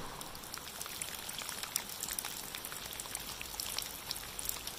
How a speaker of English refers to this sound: Well, I am standing just outside my bedroom window, so I'm under like the edge of the house roof, so I'm not getting rained on. It's raining in the background. It's probably a little bit loud for me